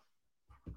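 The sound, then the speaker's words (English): After a near-silent moment, two quick, faint dog sounds come in close succession, a soft huff and then a slightly louder breathy grunt, as a dog pants and shuffles. “This is full-blown energy time for the dogs.”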